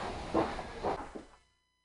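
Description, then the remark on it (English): A door being shut: a few low, muffled knocks and rattles over a steady background hiss, the last one soft, then everything falls silent. “Let me shut that door.”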